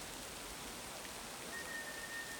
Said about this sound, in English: rain is falling steadily. A sentry stands atop the red brick town wall, his woolen cloak growing heavier with each hour of drizzle.